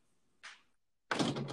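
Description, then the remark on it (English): An outdoor fridge door swings and shuts as someone gets cold beers from it: a short soft swish, a brief pause, then a loud, full-bodied thud and rattle that carries to the end. “To the listeners, if you just heard my door shut, that's that I was just going into my outdoor freezer here, my outdoor fridge, keeping my nice lemon beers nice and cold.”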